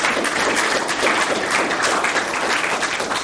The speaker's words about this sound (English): Okay, let's give a round of applause to our guests for getting through that lightning round.